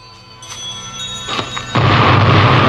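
A couple of sharp bangs build tension, then a loud construction explosion bursts in with a heavy roaring boom that rumbles on through the end. No voices.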